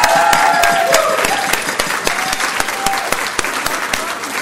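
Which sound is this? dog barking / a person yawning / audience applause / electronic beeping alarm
audience applause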